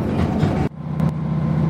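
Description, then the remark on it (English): Steady low rumble inside a moving train winding towards Cree Alaric, where the train splits, on its way to Dalmally station, loud and continuous, with a sudden shift in tone partway through and a couple of faint high clicks, no voices. “so we're sort of winding our way towards Cree Alaric, which is where the train splits.”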